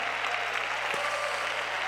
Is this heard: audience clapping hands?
yes